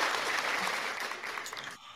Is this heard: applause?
yes